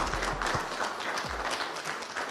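Steady applause from a small group at a COVID-19 vaccination in Chicago, a dense crackle of many hands clapping at an even level for a couple of seconds, with a few low thumps underneath and no talking.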